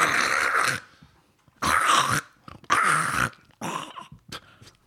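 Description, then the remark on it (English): A person mimics a small dog's yapping bark, four sharp yips with brief pauses between them, alone with no other talking. “If it was a chihuahua, it would be.”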